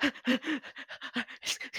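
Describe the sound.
A person imitates a wolf named Fenris panting after digging a hole during a role-playing game: about a dozen quick, rhythmic, breathy huffs with a voiced edge, fairly loud, with no talking.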